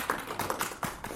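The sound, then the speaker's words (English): A sparse, scattered patter of applause from a small audience asked whether they know a video game, a handful of hands clapping unevenly in short bursts for about a second, moderately loud with no talking over it. “So by applause, are people familiar with the game that Storm is speaking of?”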